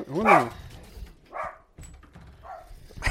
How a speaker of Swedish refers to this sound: Oj, där var hunden också. Japp. Ja, hon kan fortsätta, det är lugnt.